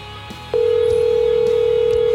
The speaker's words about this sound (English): Yeah, it's ringing, man.